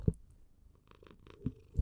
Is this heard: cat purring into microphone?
yes